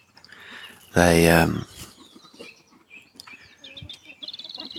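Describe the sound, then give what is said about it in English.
In a chicken enclosure in the morning, a loud, harsh squawk bursts out, then softer clucks and scattered high chirps from chickens continue in the background, ending in a quick run of shrill peeps. “But what really seems to happen is the chickens go in and eat the duck food.”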